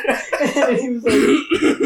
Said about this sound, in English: Oh shit! Bro, you coughed up so much.